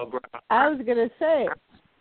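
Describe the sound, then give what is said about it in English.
A person imitates a puppy, with a few quick little yips followed by two drawn-out, whiny cries that rise and fall in pitch. “I'm doing my Jay Zilla puppy.”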